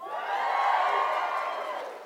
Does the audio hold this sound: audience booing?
yes